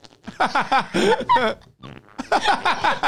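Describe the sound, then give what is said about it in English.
A rapid string of wet, sputtering fart-like noises made by squeezing a hand against an armpit, several loud bursts in a row with a short pause in the middle. “I can do incredible armpit farts.”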